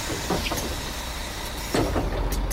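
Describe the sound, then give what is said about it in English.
A big yellow school bus in Nashville rumbles along with a steady low engine drone, broken by a couple of brief hissing bursts, with no talking. “Throughout elementary school, neighborhood friends and I meet at the driveway of some stranger's house to keep an eye out for the big yellow school bus that will take us through Nashville.”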